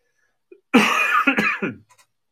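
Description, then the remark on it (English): A man coughs in a quick, harsh burst of several hacks lasting about a second, fairly loud, followed by a brief throat-clearing rasp and then quiet. “I apologize for my coughing.”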